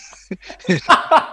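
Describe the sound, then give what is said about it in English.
A person vocally imitates a cat's yawn with a few short, drawn-out voiced sounds that rise and stretch, rather loud, with no clear words. “He's cat yawning.”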